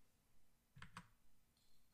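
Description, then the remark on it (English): Two quick clicks of Bluetooth computer keyboard keys, a fraction of a second apart, with no talking. “Is my keyboard dead?”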